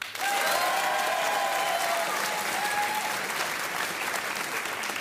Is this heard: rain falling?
no